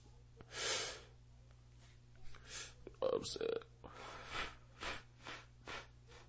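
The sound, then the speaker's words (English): Several harsh, raspy bursts of coughing mixed with forceful exhaling of blunt smoke, with a louder choking cough cluster in the middle and breathy puffs after. “Yeah, when you blow smoke out and coughing at the same time, you know that shit pressure on God.”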